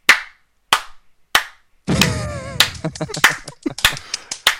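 Three slow, sharp single claps, then a lively burst of scattered applause from a small group, with a brief cheering voice rising over the clapping at its start.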